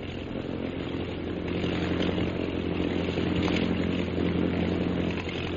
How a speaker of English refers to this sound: He's throwing a circle of planes around the camp. The scout planes are coming straight here, all right.